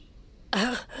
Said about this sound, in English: Wolf of heaven, coughing blood into my hand like a wounded pup.